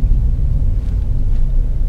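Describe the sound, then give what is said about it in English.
A steady, deep rumble of a car rolling slowly through a company car park with a 10 miles per hour limit, heard from inside, with a couple of soft muffled jolts as the wheels pass over a speed bump. “Over a bump.”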